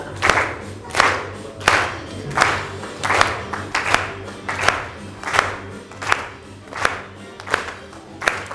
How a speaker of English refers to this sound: All right, let's have everybody standing up. Feel free to do some of the actions, all of the actions, none of the actions. But we're going to go for it. So clap our hands.